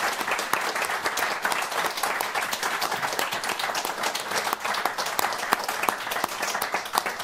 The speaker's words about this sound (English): I usually like to thank my panel speakers at the beginning and at the end, and shamefully I forgot. So can we please give them all an extra loud round of applause for their contributions?